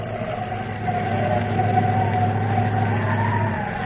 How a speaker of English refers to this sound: Nothing but dust, dust, and more dust. That wind howling.